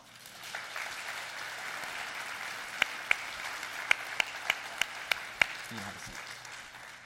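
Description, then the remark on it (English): Audience applause for a speaker: a steady wash of many hands clapping with a few sharper, louder claps standing out near the middle before it tapers slightly at the end. “Let's give him a hand.”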